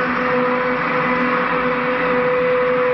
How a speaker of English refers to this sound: How long? 5 seconds. Now. We've done it. The door's opening.